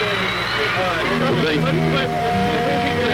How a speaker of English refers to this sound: again for a second time to do their concert here at Stephen Cleveland Stadium. And the crowd are roaring, you can hear them. And I do hope they're able to complete their whole concert.